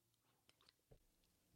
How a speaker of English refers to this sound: Let me get a sip of water, and then we'll go ahead and talk about some of this shit, man.